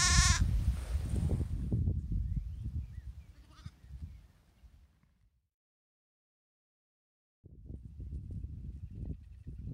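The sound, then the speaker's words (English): A sheep, one of a small flock of five, lets out one loud, wavering bleat at the start, followed by low rustling and shuffling, a brief silence, then more muffled movement sounds. “journalist and farmer A.C. Shilton got what she asked for. Sheep. 5 sheep.”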